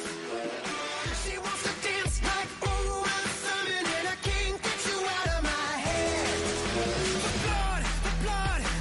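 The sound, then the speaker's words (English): Loud, driving pop punk with a shouted lead vocal over distorted guitars and steady pounding drums, dense and energetic throughout with no pauses. “it's got that driving kind of pop punk beat to it that can really be motivating.”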